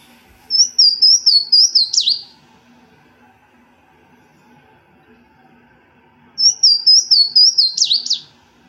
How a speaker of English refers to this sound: It's a beautiful song. Yeah, isn't that lovely? Yeah, very kind of slurred whistles. It's a good song. If you want to find a Louisiana waterthrush, definitely need to learn that song